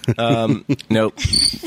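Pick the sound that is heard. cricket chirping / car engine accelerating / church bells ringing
cricket chirping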